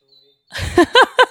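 A bird clock, which plays a different bird call for every hour, sounds its recorded call: three quick, bright chirps in a rapid rhythm after a short rustle, loud, with no one speaking.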